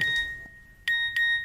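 A mobile phone text message notification tone chimes three times at night, a clear electronic ding with ringing overtones, fairly loud, the last two chimes following each other quickly with no voices.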